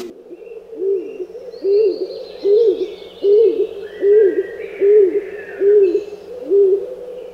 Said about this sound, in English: Tweet of the Week is Stock Dove, and I've included this bird especially for Howard.